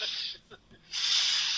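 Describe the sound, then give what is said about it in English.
Two drawn-out, airy sniffs separated by a short pause with a faint wet catch, like someone sniffling through tears. “Are you crying? Kind of.”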